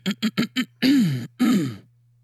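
A man clears his throat into a microphone: four quick guttural bursts, then two longer, drawn-out rasping grunts, with a low steady electrical hum beneath.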